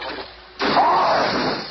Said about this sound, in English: You did it, Reed. He crashed right into the chemical vial.